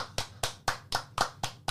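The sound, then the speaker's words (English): Seven sharp hand claps in a steady, quick rhythm, like a single person applauding, with no voices over them. The claps are a round of applause for the film company A24. “So, round of applause for A24.”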